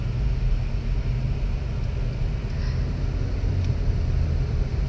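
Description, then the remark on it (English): A steady, loud low rumble of a car engine and road noise fills the whole stretch as the car stops in traffic to let people in, a continuous drone with faint brief ticks. “Ooh, there's traffic. I stopped because I was letting people in.”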